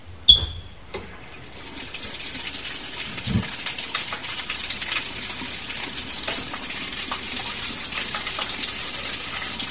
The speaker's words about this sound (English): Okay, we're at the outside shower at Pindari. It's a cold night in July.